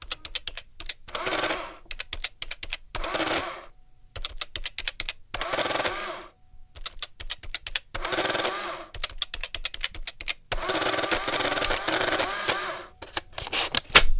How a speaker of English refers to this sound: The absolute number one sound effect we have is an old, it's very satisfying, is an adding machine. Ladies and gentlemen, as a bonus, let's hear the adding machine sound effect.